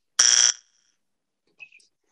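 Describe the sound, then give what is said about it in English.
A single harsh, buzzy quiz buzzer blares for about a third of a second, rich in raspy overtones, followed by a couple of faint, brief high chirps and then silence. “About to buzz.”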